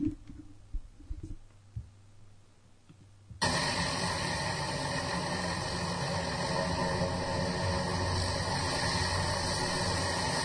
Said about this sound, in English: This fucking chopper is going right down the street.